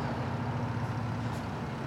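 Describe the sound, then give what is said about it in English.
A large UPS delivery truck idles and makes a U-turn on a street, its steady low engine rumble filling the scene with a faint hiss of air brakes in the background; no one speaks. “Ooh, that UPS guy is not good at U-turning.”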